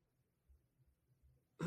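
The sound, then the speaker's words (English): A few soft, low rumbling noises, then a single quick, forceful throat clear right at the end, fairly loud. “Clearing my throat.”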